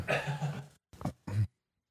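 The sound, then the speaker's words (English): A person coughs several times in quick succession: one longer, rough cough followed by two shorter, sharp bursts, with a brief silence after. “Get edit out the coughing at.”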